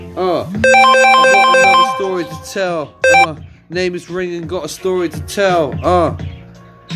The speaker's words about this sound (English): Another story to tell, and my phone is ringing